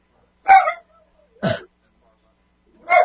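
A dog barks three times in short, sharp yips, with pauses between each bark; there is no talking around it.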